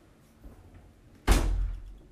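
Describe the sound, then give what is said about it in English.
After a near-silent moment, a door opens abruptly with a sharp thump, followed by a brief low rumble as it swings or slides. “You didn't even close my door!”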